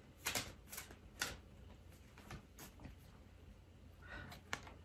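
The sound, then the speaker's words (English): A Queen Moon Oracle card deck being shuffled for an October reading, with a series of crisp, irregular riffling bursts and soft flutters, no one speaking. “So we're going to do the Queen Moon Oracle deck for October. I'm going to shuffle this a little bit and see what energy October has for us.”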